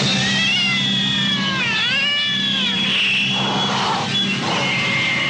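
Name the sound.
cat meowing and caterwauling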